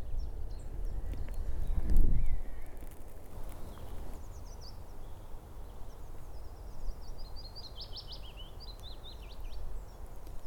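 A willow warbler sings soft, high, sweetly descending phrases on heathland among conifers, over a steady low rumble, with a dull thump early on before the song begins.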